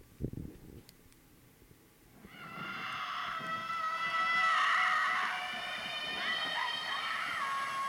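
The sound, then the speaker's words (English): A crowd of people doing the Flogsta scream, with Swedish-sounding voices, screams together in long, overlapping, high-pitched wails that swell after a brief quiet start and keep going steadily, outdoors. “How do their screams have a dialect? They do sound very Swedish, don't they?”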